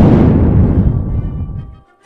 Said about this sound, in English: The storm will arise and trouble the skies this night, and more for the wonder, the ghost from the tomb affrighted shall come, called out by the clap of the thunder.